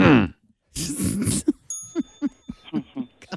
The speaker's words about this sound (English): Sorry. He's cracking himself up over there because he's got a sound effect of me clearing my throat. He just thinks it's hilarious. I had it for years.